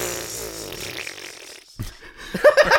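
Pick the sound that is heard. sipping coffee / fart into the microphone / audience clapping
fart into the microphone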